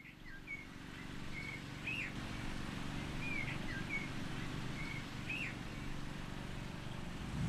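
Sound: birdsong outdoors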